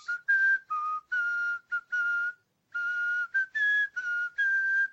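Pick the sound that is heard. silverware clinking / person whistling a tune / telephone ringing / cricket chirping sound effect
person whistling a tune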